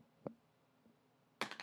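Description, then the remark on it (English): A crystal die rattles across a table: a single sharp tap, a faint knock, then a quick burst of hard clattering as it tumbles and settles, landing on 14. No one speaks. “But when I do, I'm going to roll this nice crystal boy here.”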